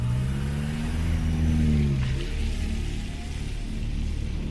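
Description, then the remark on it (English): A car carrying a coffin in the back sets out at night: its engine hums and revs steadily for a couple of seconds, then its tone fades as it pulls away, leaving a continuous hiss like rain or road noise. “he drove me. He's one of the leaders. He drove me out.”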